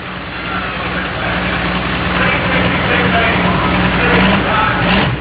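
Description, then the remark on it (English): A pulling tractor, the Gang Green John Deere in the Outlaws class, roars loud, a steady, heavy drone with a low throbbing hum that holds for several seconds and swells slightly near the end. “Champ with the Outlaws on the Gang Green John Deere.”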